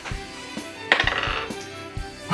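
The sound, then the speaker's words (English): Dice rolled as an attack roll clatter across a hard tabletop in a quick burst of sharp clicks and taps, bouncing several times before settling on a four. Fairly quiet, with no talking. “so make an attack roll and see.”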